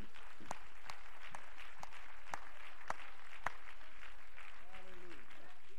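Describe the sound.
A church audience claps their hands together in praise to God in a steady, dense patter, with a few sharper claps standing out, and a voice calls out briefly near the end.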